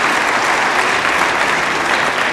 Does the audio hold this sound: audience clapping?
yes